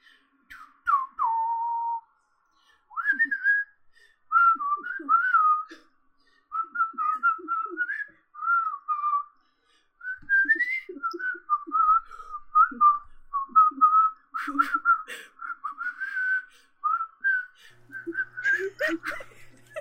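A person whistles a tune for Perry during a dice-rolling game, a steady melody of short phrases carried on for about twenty seconds, with brief breaths between notes and a hint of laughter near the end.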